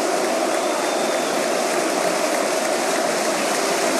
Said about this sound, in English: Listen to the roar here for Fernandez, making the substitution to kill a minute.